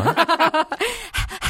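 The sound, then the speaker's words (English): A person pants rapidly and loudly into the mic, imitating a dog, with quick rhythmic huffs followed by a few breathier, drawn-out gasps. “I think that's the first time I've ever panted into the mic on this show.”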